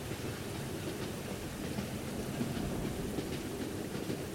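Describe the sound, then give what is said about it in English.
A train, train number 99 on its route to New Orleans during a flood, rolls steadily along rail tracks, a continuous low rumble with faint rattling wheel noise that holds an even loudness throughout, with no voices. “Luckily, they heard the train.”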